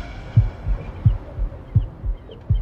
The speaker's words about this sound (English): Damn, my heartbeat. Man, that's what it's supposed to do. No, my shit beat too fast.